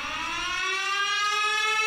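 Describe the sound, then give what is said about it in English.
A siren holds a steady, sustained tone with a rich, buzzy edge, heard coming through the pines in the woods, sounding fairly loud and unbroken throughout, with no voices over it. “Oh, I hear a... what's that siren?”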